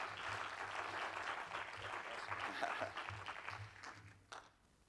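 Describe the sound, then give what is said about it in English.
An audience applauds together for people who shared, a dense, steady wash of clapping that holds for several seconds before thinning out and fading near the end. “Would you give them a hand clap for sharing?”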